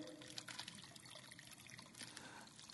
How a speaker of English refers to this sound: What's going to happen if I start pouring into this cup? It's going to overflow, right?